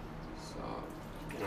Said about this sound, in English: I'm dealing with boiled water, so I have to be careful of handling this. So you know, it's really hot, so and I may get burned.